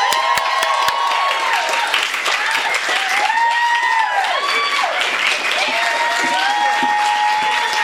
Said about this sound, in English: You guys, we're so excited. Please, big, big, big round of applause for